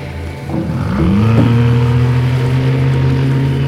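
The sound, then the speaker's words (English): A motorboat driven by Mr. Q revs up and settles into a steady, loud drone, its low hum holding strong with faint whooshing of water and wind, no voices present. “We should let Mr. Q concentrate on driving the boat.”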